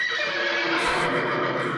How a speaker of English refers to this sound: Can we put a horse sound effect into the podcast? I might do that.